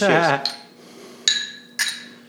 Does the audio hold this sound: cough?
no